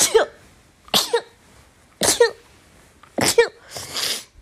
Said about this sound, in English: hold on, I have to sneeze.